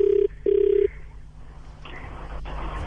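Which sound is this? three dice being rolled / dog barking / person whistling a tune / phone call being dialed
phone call being dialed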